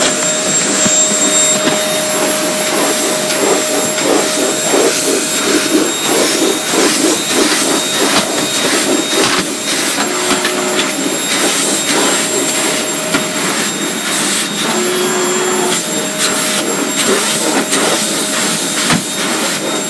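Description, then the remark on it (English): A vacuum cleaner, used by someone's dad to vacuum, runs steadily and loudly throughout, a constant whining roar with a high-pitched tonal hum, its pitch shifting slightly as it moves; no one speaks. “Yeah, so you're gonna hear a vacuum for like a minute or something, and then yeah, it will be fine.”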